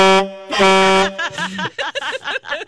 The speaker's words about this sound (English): Ocean horn.